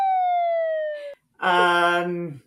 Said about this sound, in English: Wow. You know what? That was me calling you just to see if your phone was on. Silence your cell phone thing.